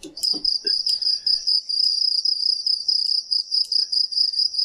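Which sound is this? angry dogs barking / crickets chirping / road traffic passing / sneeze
crickets chirping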